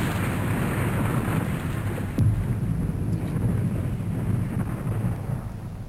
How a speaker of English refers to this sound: Like a big thud. Yeah. Like a big metal thud.